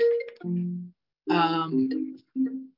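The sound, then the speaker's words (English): A phone ringtone plays a short electronic melody of bright, chiming tones in a few bursts separated by brief pauses, fairly loud with no talking over it. “My phone just keeps ringing off the wall for time.”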